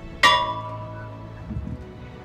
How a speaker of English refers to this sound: Ringing the bell for Blaine H. Wilhelm, oiler, is his daughter